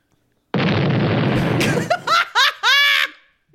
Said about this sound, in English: can we clip the scream that the guy does in that episode of I Think You Should Leave where he's so horny his stomach hurts?